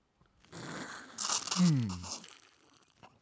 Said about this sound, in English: Let us slurp.